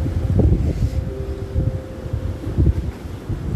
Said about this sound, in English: I feel I'm being healed with the breeze as and when it's touching me. The waves that are, you know, I'm able to listen into.